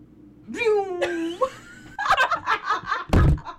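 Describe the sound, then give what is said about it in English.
A microphone drops with a single heavy, booming thud near the end, after a voice makes a rising, sung-out vocal noise and some laughing chatter. “I dropped my mic. Literally fell.”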